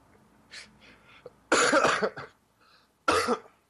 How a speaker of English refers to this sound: Coughing? Mm-hmm. I can do some more. I'm still fighting off this cough from PAX.